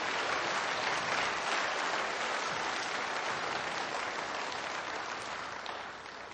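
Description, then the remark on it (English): An audience claps together in a sustained, dense round of applause that holds steady for several seconds, then tapers off slightly toward the end, with no voices rising above it. “I mean, if you're going to clap, you got to clap.”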